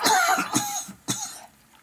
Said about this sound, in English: Can you edit out my coughing